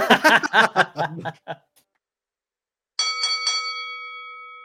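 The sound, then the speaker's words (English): After a burst of chuckling laughter and a short silence, a handbell is rung three quick times in a tavern to call last orders, its bright metallic tone sustaining and slowly fading away, clear. “Oh, and that bell. That was for last orders, so we'll be closing the tavern soon.”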